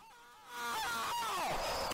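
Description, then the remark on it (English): A harsh, buzzy wrong-answer buzzer from a quiz game sounds for about a second and a half, loud and sustained, its tone sliding downward near the end before cutting off abruptly. “And so there are two buzzers to know if you're right or wrong.”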